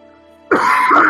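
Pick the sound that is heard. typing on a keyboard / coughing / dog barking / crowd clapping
coughing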